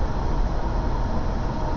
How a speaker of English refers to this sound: This train has got to be at least 3 miles at this point. At least. Because I saw the main engines. This is insane.